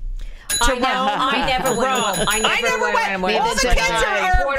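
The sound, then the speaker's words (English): A bright bell rings in quick repeated dings, fairly loud, while several voices talk and laugh over it throughout. “Spring break, going away on spring break should get a bell.”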